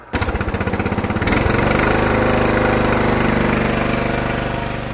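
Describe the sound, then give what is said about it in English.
A small lawnmower engine used as an emergency generator starts with a rapid, chugging beat, then revs up into a louder, steady, higher-pitched drone as its output heads towards 16 volts, with no voices over it. “Let's run the engine on up a little faster.”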